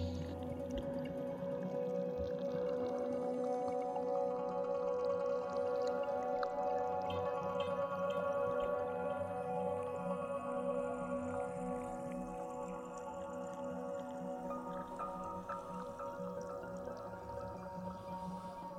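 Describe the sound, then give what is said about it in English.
A dense underwater soundscape with calls of migrating humpback whales amid steady, droning tonal hums, loud and unbroken for the whole stretch, with scattered higher chirps and clicks and no voices. “then when they're immersed in an installation or a listening experience where they actually hear how loud and intense and heartbreaking in a way that sound world is for species such as humpback whales who are migrating, yeah, it's quite confronting.”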